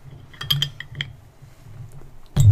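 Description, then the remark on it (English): Small metallic clicks and scrapes as a bottle opener works at a cap, followed by a louder, fuller burst near the end as the cap gives way, over a low background hum. “Yeah, that bottle opener's kind of weird.”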